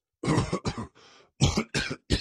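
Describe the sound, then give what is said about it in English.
A rapid series of harsh, loud coughs from a king, about five bursts in quick succession with a brief raspy breath between them, unrestrained like a fit of uncontrollable coughing. “The king was coughing uncontrollably.”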